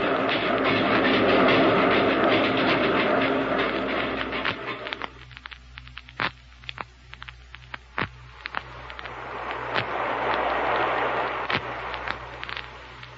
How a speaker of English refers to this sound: I'm going to turn on the power. Sure. Boy, this machine makes more noise than a boiler factory. Yeah. Sounds powerful, don't it?